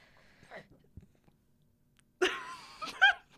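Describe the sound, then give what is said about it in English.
Two people burp at the same time, their loud, rough, drawn-out belches overlapping into one burst lasting about a second, after a stretch of near silence. “burped, but I burped at the same time.”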